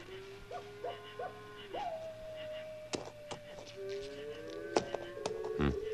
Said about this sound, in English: For instance, that old owl and that coyote might even be talking to each other. Yeah, and they might be talking Apache language.